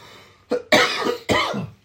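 coughing

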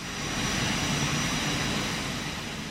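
aircraft engines

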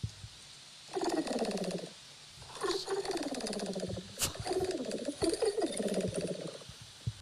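pigeon cooing

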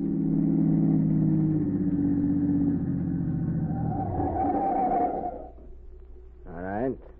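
car engine driving

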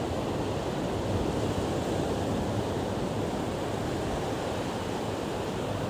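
ocean waves washing ashore

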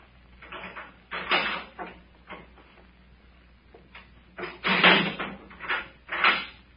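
door opening

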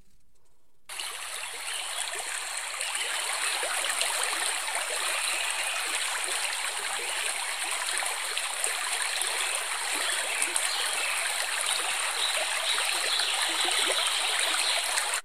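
flowing river water

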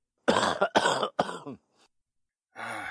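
throat clearing and coughing

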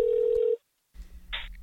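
telephone dial tone

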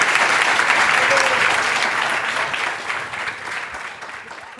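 audience applause

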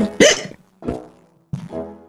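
hiccups

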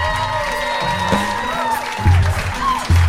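audience applause

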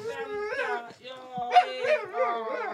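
dog whimpering and howling

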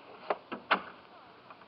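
door being closed

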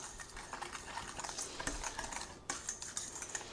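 whisking batter

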